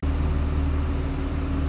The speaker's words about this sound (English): She records from a train, so the sound is a little iffy. I'm gonna do my best to clean it up, but I make no promises.